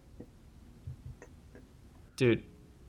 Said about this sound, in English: I can hear typing. It's because we're both typing.